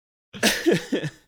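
A light cough up close: two or three quick, breathy bursts in about a second, moderately loud, with no talking around it.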